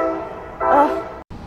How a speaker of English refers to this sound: Sorry, there's a train.